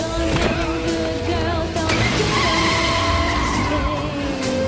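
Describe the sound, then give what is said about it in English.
A car engine roars to life and tires screech loudly in a long, continuous squeal with shifting pitch, sustained for several seconds, with no talking. “Start the car.”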